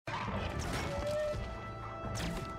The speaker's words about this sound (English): He's hitting orcs with his arrows.